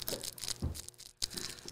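Paper burning with a dense, steady crackle, full of fine dry pops and crinkling hiss, with a brief lull near the end before the crackling picks up again.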